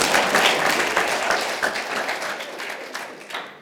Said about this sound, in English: Give her a clap.